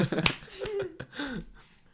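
crowd, hand clapping

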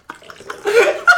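household object, liquid being poured

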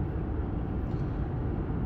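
vehicle, car driving on highway

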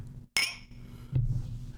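household object, glasses clinking

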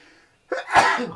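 human body sound, sneeze

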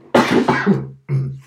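human body sound, coughing

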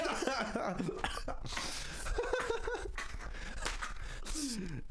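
human body sound, cough into the microphone

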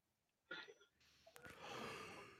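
human body sound, yawn

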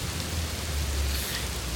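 nature, pouring rain

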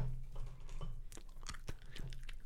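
food or drink, chewing candy corn

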